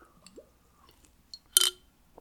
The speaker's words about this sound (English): That is, you hear that marble? That's that marble in a glass bottle. Such an iconic bottle.